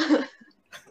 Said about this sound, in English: Let me cough in here.